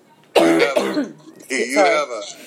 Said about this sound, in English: And you know that because the minute I say sharks, you start to cough, right? Right. I have a tickle.